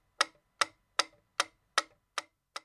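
clock ticking

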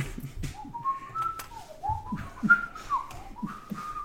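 a person whistling

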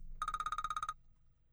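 mobile phone ringing

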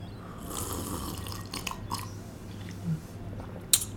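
sipping tea

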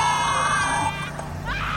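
woman screaming

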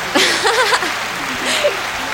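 people cheering

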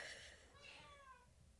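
cat meowing loudly

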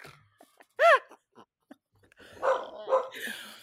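dogs barking

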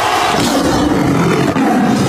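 tiger roar sound effect

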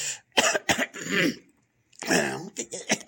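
throat clearing

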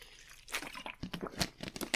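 drinking water

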